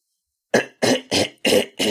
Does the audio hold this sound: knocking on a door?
no